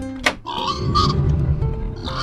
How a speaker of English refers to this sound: Oh my goodness! The pigs, they've gotten loose!